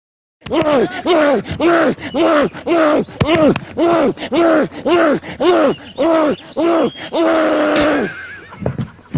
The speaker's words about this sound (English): And I realized for a podcast, a scene doesn't work that well, but at least you can listen to the audio. So let's take a listen to an unaired scene of the Loth cat from Ahsoka.